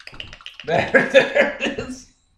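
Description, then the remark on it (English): A wet, wobbling burble from a person's cheek grabbed and shaken back and forth by hand, lasting about a second and a half, fairly loud, with a faint sound right after. “what he did was he grabbed his cheek and like shook it back and forth to make that sound”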